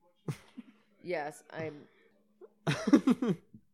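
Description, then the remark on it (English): A robot character in a film sneezes, a short voiced, sneeze-like outburst mixed in with spoken dialogue, fairly loud against a quiet background. “Why is a robot sneezing?”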